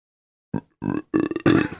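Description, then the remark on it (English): A voice makes a series of four burp-like croaks, imitating a frog; each is short and throaty, starting faint and growing louder, with a low rasping pitch and brief gaps between. “Oh, I thought that was an impression of the Cardiff Frog.”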